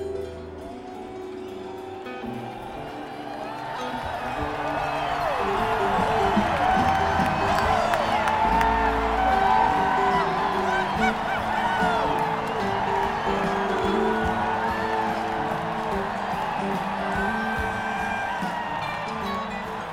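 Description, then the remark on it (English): A large concert crowd roars with cheers, whoops and applause as a song starts, a dense sustained wall of noise that swells louder midway and stays loud throughout, with scattered high shouts on top. “Where there are many huge applause moments, this is the biggest.”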